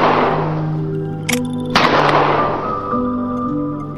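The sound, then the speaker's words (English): Two sharp gunshot cracks ring out in quick succession, loud, over a steady backdrop of sustained low musical tones that keep playing throughout. “Gunshots.”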